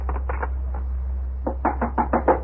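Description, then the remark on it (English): Someone knocks on a door: a few scattered raps, a brief pause, then a faster, louder run of about seven urgent knocks over a steady low hum. “Who's there? Who is it? Oh, open the door.”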